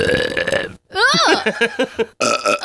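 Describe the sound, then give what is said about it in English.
Several loud burps made on demand in a row, the middle one long and warbling with a rising and falling pitch, followed by another throaty belch after a brief pause. “Can the two of you burp on demand?”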